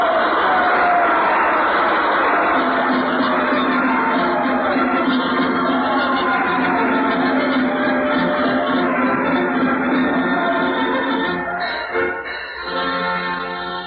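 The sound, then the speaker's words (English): A theater audience cheers loudly, calling out a name, in a dense, sustained roar of many voices that carries on for several seconds before dipping briefly near the end. “You heard them cheering just now, and what was the name they were calling, sir?”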